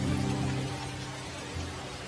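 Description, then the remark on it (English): Steady, hissing rain falls throughout, easing toward a drizzle, its level dipping slightly after the first moment, with a soft low hum running underneath and no voices. “And as you do this, the rain starts to subside. It gets less and less, where it's almost down to a drizzle.”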